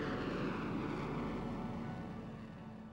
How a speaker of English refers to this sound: I saw the Vulcan fly in 2008. I was at the Farnborough Air Show and I'd never seen anything like it. There was this enormous bat-like bomber from a different age and it was banking and howling at the crowd.